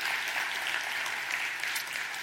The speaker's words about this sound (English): Could you join me in just sending her off with applause and prayers? Thank you so much. Thank you.